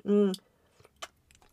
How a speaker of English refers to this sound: Listen, let me drink this hot tea.